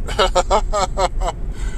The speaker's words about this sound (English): So this car has an indicator when you leave your blinker on too long too. Wild.